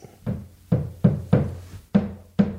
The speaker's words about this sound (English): Are you serious? Maybe he's hammering something.